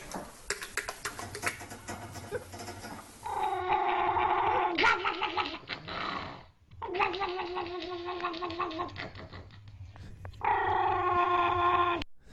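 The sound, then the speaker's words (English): A dog gives long, warbling vocalizations in three loud stretches, the tone shifting and wobbling unnaturally as someone moves its mouth while it sounds off. “It was another dog. Somebody's doing that to this dog's mouth, too.”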